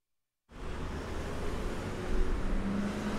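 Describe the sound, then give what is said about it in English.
Steady low roar of road traffic at the Lake and Lincoln intersection in Alaska, a broad rumbling wash with occasional engine hum rising slightly, continuous, with no one speaking. “So I'm standing here outside of the Lake and Lincoln intersection where in May the Alaska Department of Transportation changed the lane configuration.”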